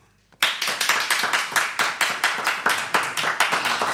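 A debate audience claps in unison to vote for the argument that aliens will be unimpressed by the ruins of our civilization, a steady rhythmic beat of about three claps per second starting abruptly after a brief silence and staying loud throughout, with no talking.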